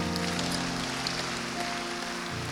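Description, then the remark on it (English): A steady wash of applause from a church audience, given to Jesus, dense and continuous like rainfall, with sustained low musical tones humming underneath and no voices. “One more round of applause to Jesus.”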